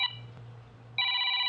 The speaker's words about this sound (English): Oh shit, that scared me. Didn't know the phone line here was still active. I guess let's see who's calling.